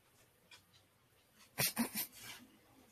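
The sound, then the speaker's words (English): A dog whimpers in a quick cluster of three or four short, breathy yelps, with nothing much else around it and no talking. “My dog just knocked something over.”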